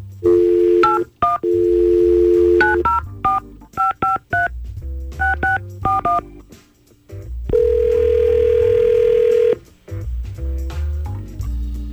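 A telephone dial tone gives way to a quick series of touch-tone keypad beeps, followed by a long, steady ringing tone on the line, as hosts of radio station Y100 call a man. No talking.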